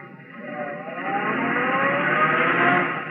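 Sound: car engine driving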